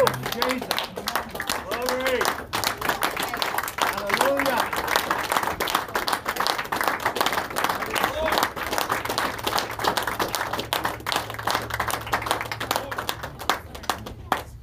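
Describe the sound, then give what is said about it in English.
The Rock Harbor church audience applauds for the Lord steadily for about fifteen seconds, a dense wash of many hands clapping, with a few voices calling out early on over the clapping. “That's an applause for the Lord right there.”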